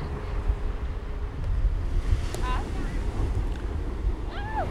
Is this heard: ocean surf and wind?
yes